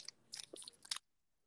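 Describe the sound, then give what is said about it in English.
Crisp chewing with several wet, crunchy bites packed into about a second, bright and clicky, then silence. No one speaks. “Like, do you need to chew that loudly?”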